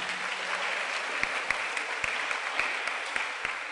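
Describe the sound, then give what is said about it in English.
A church audience claps steadily, a dense wash of applause with a few sharper individual claps popping out, moderately loud and sustained throughout with no talking. “Are you clapping or you're not clapping?”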